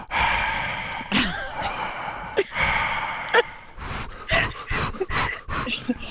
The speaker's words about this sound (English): Heavy breathing? Yeah, from all three of us.